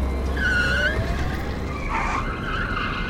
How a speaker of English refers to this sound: Those are self-driving smart cars, still up and running. Ha! It looks like they're chasing the one in front.